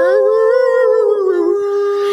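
A long, sustained wolf howl rings out clearly, its pitch gliding slightly downward before holding steady, loud with no talking over it.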